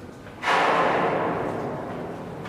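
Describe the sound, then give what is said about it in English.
A heavy metallic bang from shipping containers being loaded onto a ship during cargo operations, landing suddenly and loudly over a low background rumble and resonating through the ship, then ringing out in a long, slowly fading reverberant roar. “You can hear inside, you can hear the containers being loaded. The cargo operation is ongoing, and that's what you're hearing.”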